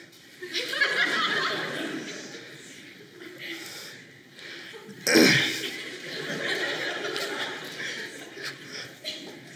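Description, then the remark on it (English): A single sharp sneeze bursts out loudly, followed by a swell of scattered audience laughter and murmuring that lingers for several seconds. “God bless you.”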